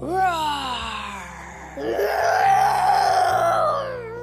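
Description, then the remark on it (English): A human voice imitates a lion's roar, one long drawn-out growling moan that slides downward in pitch, then swells louder and holds for several seconds before fading. “Rufus tiptoes up behind her, takes a deep breath, and starts to roar like... A fox. A fox, you think? A lion!”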